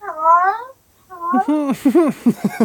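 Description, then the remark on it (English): A recording of a male pet cat: a drawn-out meow, a pause, then a longer run of warbling, chirpy meows that rise and fall, sounding almost like saying hello, fairly loud. “my cat is actually going to say hello because I got a little recording of him saying it because I had a few DMs saying, your cat does not say hello, so I'm rolling it.”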